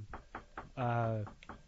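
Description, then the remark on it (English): Three quick knocks on a studio door in a steady rhythm, followed by a sustained voiced sound and one more faint tap. “It seems like there's someone knocking at the door.”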